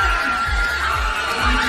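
A packed crowd of South African Springbok rugby fans roars and cheers at the final whistle in the Walkabout bar in Reading, England, loud and continuous, with a dense wall of overlapping voices and rhythmic low thumps pulsing underneath.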